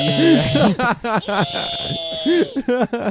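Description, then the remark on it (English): A voice imitates a bat's high-pitched, shrill echolocation screech, delivered as a run of warbling, buzzy bursts with rising and falling pitch over a thin, steady whine, loud throughout with brief gaps. “But I walk into a room full of women, and I start screaming a really high-pitched tone.”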